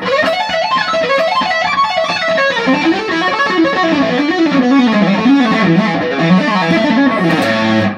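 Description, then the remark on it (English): A distorted electric guitar plays a fast tapped lick with hammer-on notes, notes rolling in rapid, even legato runs that rise and fall in pitch, loud and sustained without any talking. “So while you can use a tap to, say, sort of complete a sequence.”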